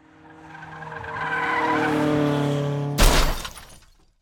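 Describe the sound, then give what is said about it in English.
Tires screech in a long, rising skid for about three seconds, then a sudden loud crash of impact with scattering debris as another car hits the car of a driver who fell asleep at the wheel. Loud, with no voices. “a car came out of nowhere and whacked us.”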